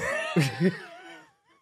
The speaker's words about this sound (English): Nope, he's coughing.